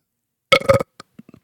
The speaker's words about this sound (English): And now I didn't realize when I talk this much, you breathe in a lot of air, you have to burp.